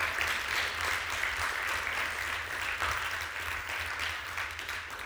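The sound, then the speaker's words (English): A church audience applauds steadily for a man, a dense, continuous patter of many hands clapping at an even loudness throughout, with no voices rising above it. “Come on, can we give him a better round of applause than that?”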